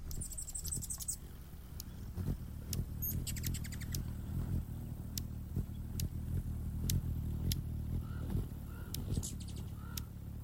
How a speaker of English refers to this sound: All that humming and chirping is about a dozen hummingbirds all trying to drink out of my feeder at once. That's really unusual for our little garden.